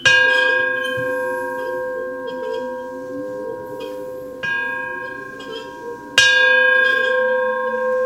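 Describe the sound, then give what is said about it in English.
A Gordon Reed hand bell, a grandfather's bell, is tolled three times to begin a session, unevenly spaced, each clear metallic strike ringing on with a long sustained tone that overlaps the next. Fairly loud, with no talking. “I'm going to toll it three times.”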